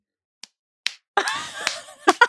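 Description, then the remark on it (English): A person imitates a loud golf clap: a couple of loud, sharp single hand claps spaced apart, then more slapping claps continue under a burst of vocal laughter, roughly five hits in total. “He's got like a loud golf clap.”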